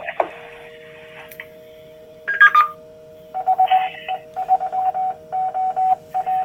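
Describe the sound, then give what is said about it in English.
A radio repeater that has not been used for a while wakes up and sends its call sign in Morse code, a steady tone keyed into short and long beeps in an irregular rhythm over faint static and hum, with no one speaking. “Okay, so what you're getting there, so if you heard the Morse code, that is the repeater putting out its call sign.”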